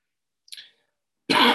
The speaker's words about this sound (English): Sorry about this. Just a bit of a cough there.